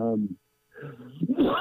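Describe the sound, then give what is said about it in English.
A single sneeze: a brief voiced intake building into a sharp, noisy burst at the end. A short voiced sound comes first, followed by a moment of silence. “Bless you. Excuse me.”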